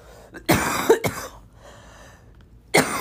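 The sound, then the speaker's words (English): A couple of sharp coughs in quick succession, followed by a pause and one more cough at the end, loud and right up against the microphone with no talking. “Sorry, I don't mean to be coughing on the microphone.”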